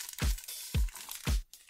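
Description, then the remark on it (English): Protective plastic film is peeled off a custom 65-watt fast charger in three even, crackly bursts, each with a soft low thump, spaced about half a second apart with no talking. “I'm starting to enjoy these charger peels.”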